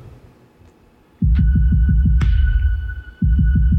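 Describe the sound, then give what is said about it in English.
A loud, rapid heartbeat thumps in low, throbbing pulses, pausing briefly before resuming, with a thin steady tone and a couple of sharp clicks above it. No one speaks. “Can I listen to your heartbeat?”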